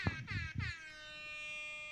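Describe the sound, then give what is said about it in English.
A rap-style air horn sound effect played from a phone blares three quick blasts followed by one long sustained honk, loud and brassy, with no one talking over it. “I have the rap air horn on my phone.”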